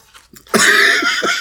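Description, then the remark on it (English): A harsh, loud cough bursts out from a person wearing a Halloween mask with no mouth hole, followed by a couple of short rasping hacks with a breathy, muffled edge from coughing inside the mask. “But I can't breathe. I'm coughing on the inside of that thing.”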